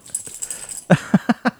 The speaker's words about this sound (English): Pod dog agrees. Right? Well, he does.